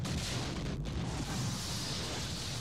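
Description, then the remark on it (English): A sustained movie explosion blasts out of the ground floor of a building, roaring with heavy low-end rumble and dense crackling debris, a continuous loud blast that never lets up across the whole stretch, with no voices. “It's like, because the ground floor of it when it lands, I mean, it's like fireworks going off coming out of the ground floor of this building.”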